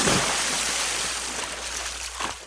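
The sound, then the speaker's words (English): Steady rushing water, like a flowing stream or gentle surf, fills the whole short stretch with a broad hiss and soft gurgles, even in loudness. “Water.”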